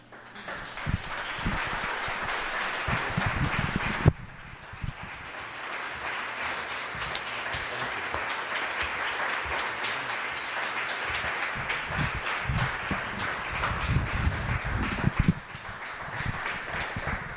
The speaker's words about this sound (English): So one more time, give all of our speakers a round of applause. They were so amazing, so amazing.